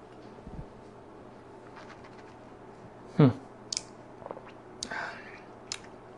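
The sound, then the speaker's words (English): A quiet sip of Larceny whiskey with water added, with a short slurp, followed by a few soft lip smacks and mouth clicks, with no one talking. “So let's take a taste of Larceny, this time with water added.”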